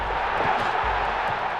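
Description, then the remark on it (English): A large hockey arena crowd roars in a steady, dense wash of noise, loud and continuous with indistinct shouting mixed in, as two players drop their gloves to fight. “And the crowd roars out of nowhere.”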